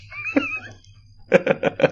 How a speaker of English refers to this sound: Fuss and sound effect is actually a purring cat.